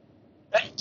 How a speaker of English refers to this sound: I'm going to... I need to sneeze. Hang on.